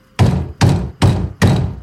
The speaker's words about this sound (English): It sounded like the door was being struck with a bowling ball.